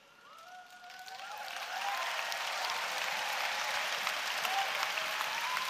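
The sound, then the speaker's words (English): A church crowd at Newday breaks into applause during a sermon, swelling within the first two seconds and then holding steady as dense, sustained clapping, with a few faint whoops or cheers rising above it early on. “It's really good to clap when you hear something you agree with.”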